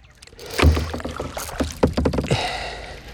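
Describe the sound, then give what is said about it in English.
Hollow, irregular thumps and knocks of a kayak hull being banged while fishing on a lake, several loud low hits spread over a few seconds with rattly clatter between them, no voices. “But if you hear a lot of beating and banging like this, that's just my kayak.”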